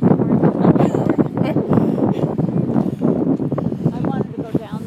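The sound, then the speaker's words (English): Steady wind buffets the microphone with a continuous low rumble and gusty roar for several seconds, loud, with muffled voices faintly audible beneath it. “See, it's windy in here. It's a little windy, but it's not that bad.”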